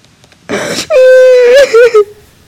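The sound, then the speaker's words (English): A man's voice, as a lion character who has just been slapped, wails loudly in a drawn-out, wavering cry after a short gasping sob, the pitch sliding and breaking near the end like exaggerated blubbering. “Look, the lion. He's crying?”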